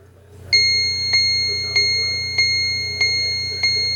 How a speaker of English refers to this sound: Now, to activate the time, it is a simple touch on the mushroom cap, and it will alert you the time by chimes. Now, as I'm recording this, it is 7:58. So let me just touch the clock. First the hour, and then you'll hear the minutes.